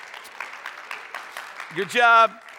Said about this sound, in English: Yeah, you guys, you go ahead and clap.